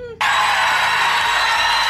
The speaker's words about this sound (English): Okay, the crowd is just cheering for that.